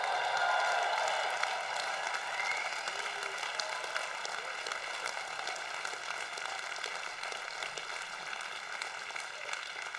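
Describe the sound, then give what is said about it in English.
A large crowd of graduates, the class of 2016, cheers and applauds in a dense, steady wash of clapping that starts loudest and eases slightly, with no speech over it. “Cheer yourself, class of 2016.”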